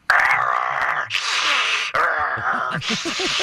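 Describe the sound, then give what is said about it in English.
A voice imitates growling and breathing noises heard from a crawl space, which were thought to come from a bear: alternating rough, raspy growls and breathy hissing exhalations, four loud bursts in a steady back-and-forth rhythm, with no words spoken. “So you got a lot of rain, and you noticed the bear making noises down there. Yeah, kind of a growling and breathing like a...”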